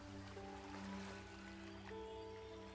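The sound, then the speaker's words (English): Soft, steady wash of ocean surf swelling and receding, fairly faint and continuous, layered with a low sustained humming drone throughout. “Do this a few more times as the waves roll in and out.”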